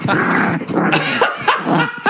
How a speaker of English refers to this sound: My dog's chasing her tail now and growling.